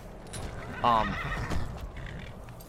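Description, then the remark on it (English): A horse gives a short, shrill whinny near the start, with a few hoof clops sounding faintly against a steady background murmur that fills the rest of the moment. “How do I get off the horse again?”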